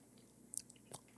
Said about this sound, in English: Does he not like sips and snacks? Well, he doesn't like the sounds. Oh. The mouth noises.